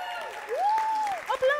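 A short burst of audience applause with a sustained, rising-and-falling cheer or whoop riding over the clapping, steady in loudness for under two seconds.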